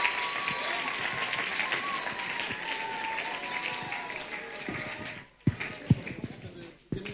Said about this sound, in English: Can we have one more big round of applause for all the children, all the youths?